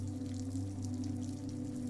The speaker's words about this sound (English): You step out into the rain once more, and ascend the slick cobblestones up a hill to rows of townhouses that look out onto London. The rain falls harder and the wind speeds up.